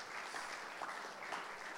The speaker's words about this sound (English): Let's give Joel and Candace and Gus a round of applause.